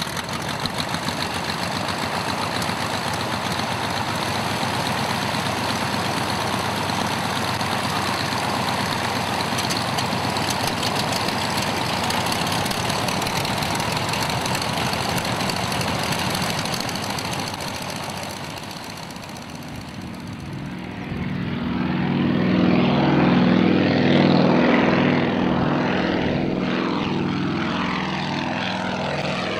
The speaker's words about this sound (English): she lined up the aircraft on the runway, applied full power, quickly rotated into the gray, drizzly skies, turned southeast, and, in what must have seemed like an instant, vanished into the midwinter English murk.